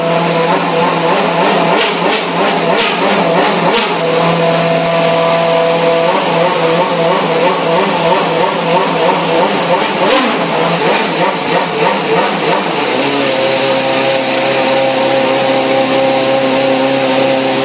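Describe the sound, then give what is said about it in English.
A Formula One car engine fires up and revs loudly and continuously, its high mechanical whine holding steady, rising and falling, then settling to a lower pitch near the end. No one speaks. “Well, for now, let's just hear the fire up.”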